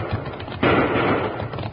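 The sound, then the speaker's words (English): A loud gunshot cracks out in Rawhide Canyon after a quieter stretch and leaves a sustained, rumbling roar that slowly fades, with a fainter pop just before it. No one speaks. “Those shots are coming from behind us.”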